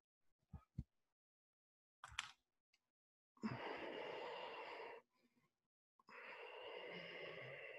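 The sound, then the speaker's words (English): Two long, steady Ujjayi breaths drawn in and out through the nose with sealed lips, the sound made in a constricted throat, each a loud, even, ocean-like hiss lasting over a second, separated by a short pause and preceded by a few soft clicks. “Bring the sound of Ujjayi breath to your practice.”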